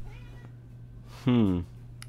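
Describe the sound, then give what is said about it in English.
A single loud, drawn-out meow from Raj, a pet cat, lasting under half a second with a slightly falling pitch, over a low steady hum, while guitars are being worked on. “And guitars and cats, they don't mix very well.”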